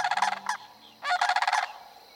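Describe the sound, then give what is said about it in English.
A flock of cranes honks and calls in two noisy overlapping bursts with a short pause between, loud, with no voices, at the edge of a marsh at dusk. “Seated at dusk at the edge of the marsh where wild things live, I watch the silhouettes of these grand birds parachute against a blazing orange and pink sky.”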